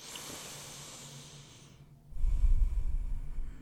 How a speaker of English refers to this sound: So, let's just take a deep breath together, okay? When do we have an opportunity to do this in our week? Probably quite rarely. So, let's just take a moment to close your eyes and take a deep breath with me.